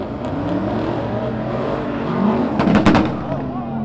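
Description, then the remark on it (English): A black Dodge Charger and a silver pickup truck spin donuts around a red car at a car meet on a parking garage roof, engines revving loudly and steadily with rising and falling pitch, then a burst of sharp crackling pops near the end over the continuous roar. “A black Dodge Charger and a silver pickup truck spun donuts around a red car.”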